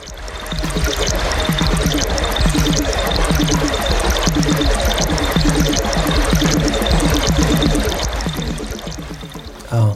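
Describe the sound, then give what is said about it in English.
Creek water flows and trickles steadily over stones, fairly loud, a continuous babbling with lots of small splashy gurgles throughout and no voices. “noticing how it's shifting seamlessly from one theme to another, and I guess that kind of speaks to how a river is constantly changing, you know?”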